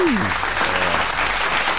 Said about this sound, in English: Look at the hand clap. It's that button time.